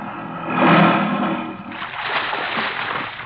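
A boat pulls up through water with a steady rushing wash that swells early on, then gives way to choppier splashing and sloshing. No voices are heard.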